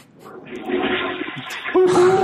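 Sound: toilet flushing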